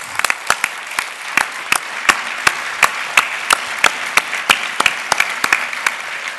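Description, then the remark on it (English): An audience applauds steadily, a dense wash of overlapping claps with sharper individual claps popping out on top at an even, lively pace throughout. “My applause to you.”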